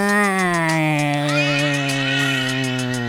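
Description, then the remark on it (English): A person imitates the growling purr of a fat grey cat named Furball: one continuous, loud voiced rumble held for about three seconds, its pitch sinking slightly, with no words spoken. “She didn't meow. She didn't really hiss. She just kinda went like this.”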